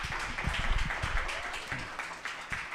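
A crowd breaks into steady applause, many hands clapping in a dense, crackling wash of sound that holds at a fairly even level throughout, with no voices standing out.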